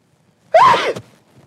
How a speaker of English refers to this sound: I need to sneeze. For reals? Everybody back away.